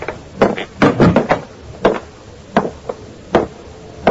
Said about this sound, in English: I went on to room 6, opened the door.